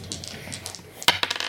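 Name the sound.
dice rolling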